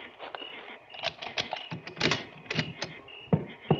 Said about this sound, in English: Now, unlock the station door and go in ahead of me.